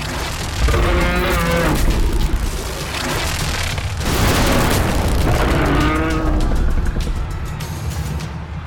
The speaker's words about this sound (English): beady red eyes, skin stretched over top of it, boils everywhere across its body as it leaps out of a building and down onto a bystander, and lets out a bellowing roar as more pour out